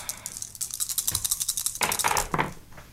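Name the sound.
dice being rolled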